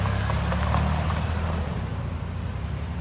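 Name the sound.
car engine running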